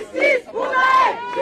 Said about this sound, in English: The protesters are shouting justice for Nahel.